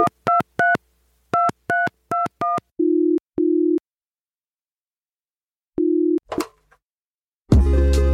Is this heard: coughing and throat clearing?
no